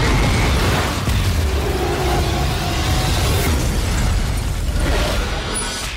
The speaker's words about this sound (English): But then 8 minutes later, the train blows up and you get this huge explosion.